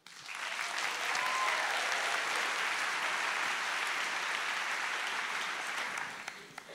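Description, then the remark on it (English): A crowd bursts into a sustained round of applause, dense clapping holding steady at a full level for about six seconds before tapering off with a few last claps. “So please give a huge round of applause for our first woman,”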